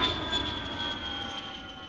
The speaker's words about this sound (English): The whole plane is going down. Never mind the two-seater. The whole fucking 757 is going down.